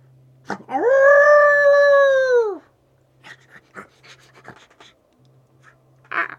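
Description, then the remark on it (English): A giant, rotted zombie dog corpse in a video game lets out one loud, drawn-out howl lasting about two seconds, sagging slightly in pitch, followed by scattered clicks and scrapes over a low steady hum. “A giant, rotted corpse of a dog.”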